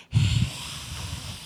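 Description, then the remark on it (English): A loud breath blows straight into the microphone, a rough burst of low rumble and airy hiss that tapers into a steady breathy noise, with no one speaking. “Yeah, I can just hear all of your breathing.”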